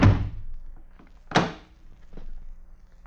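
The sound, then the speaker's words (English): A door opens with a thud, faint shuffling follows, then it shuts again with a second solid knock about a second later, with a low hum underneath. “That's funny. No one's at the door. I'll take a look outside.”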